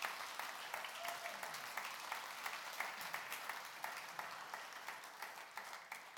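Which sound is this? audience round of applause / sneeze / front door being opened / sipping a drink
audience round of applause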